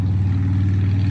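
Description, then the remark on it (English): A voice imitates a motorcycle engine revving with a steady, buzzing low rumble, fairly loud, held evenly for about a second without words. “I'm gonna ride my motorcycle and get out of here, man.”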